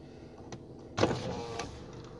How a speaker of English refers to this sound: I rolled down the window and rolled the back up because it's still kind of cold out here